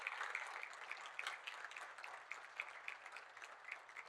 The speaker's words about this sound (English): Happy Mother's Day, ladies. Stay standing. Let's give them applause.